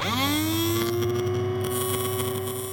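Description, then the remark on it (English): A tiny dentist drill spins up with a rising whine, then holds a steady, loud, high-pitched tone rich in harmonics for a few seconds, with no voices. “Dentist drills might make a loud sound, but they're tiny.”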